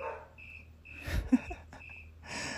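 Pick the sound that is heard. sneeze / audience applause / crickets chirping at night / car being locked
crickets chirping at night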